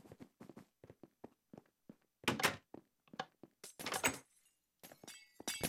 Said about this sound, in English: And you already hear the sounds of EXP as we walk through the doors here at Theater Number One, Minecraft Me, and right here, NCC.